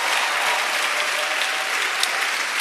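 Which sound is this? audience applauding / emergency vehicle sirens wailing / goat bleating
audience applauding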